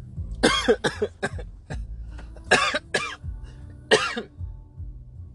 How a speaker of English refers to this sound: Here's some more coughing.